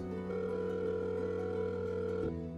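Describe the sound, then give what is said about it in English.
A steady telephone dial tone hums clearly for a couple of seconds, then its pitch shifts abruptly near the end as the number starts being dialed. No one speaks. “I stare I don't know how long before I pick up the phone and dial the number.”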